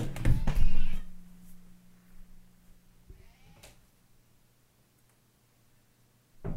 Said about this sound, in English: Oh, my cat is calling me to open the door. Give me 1 second.